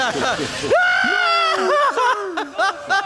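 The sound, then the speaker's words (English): A man screams all the way down a zip line in a long, sustained, high-pitched cry, breaking into shorter yelps and wavering shouts near the end, loud, with no other talking. “Just screaming into the distance, you know.”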